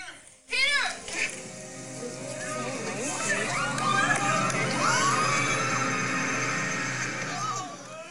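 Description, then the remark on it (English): A packed movie theater audience at a Sunday 3 p.m. matinee erupts in loud screaming and cheering at a character reveal in the film, a sustained roar of overlapping voices with high-pitched shrieks that swells and holds for several seconds. “Just to give everyone a little taste that even on fucking Sunday”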